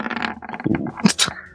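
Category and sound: household object, dice being rolled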